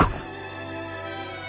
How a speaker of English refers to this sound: I crawled out the creak of that frozen hinge on my door, mocking me like the impish laughter of the fiends of hell. I turned and slammed the door